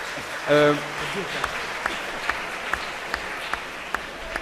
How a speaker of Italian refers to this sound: Non ho capito se l'applauso è liberatorio.